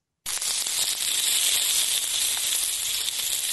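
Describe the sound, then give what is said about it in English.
Beef bologna sizzling as it fries in a hot pan, a steady crackling hiss with faint pops that starts abruptly and continues evenly throughout, no voices. “No, that's actually bologna. Fried and bologna.”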